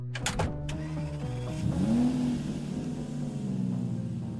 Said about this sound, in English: Put your right foot on the brake and your left foot on the clutch. Now shift into neutral and start the car by pressing the start button.